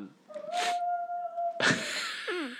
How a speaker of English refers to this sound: he's howling.